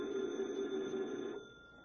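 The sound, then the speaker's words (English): A telephone on Detective Harry Parker's desk at local police headquarters rings once at night with a steady, warbling electronic tone for just over a second, then cuts off, leaving quiet background hum. No one speaks. “Detective Harry Parker is at his desk when the phone rings.”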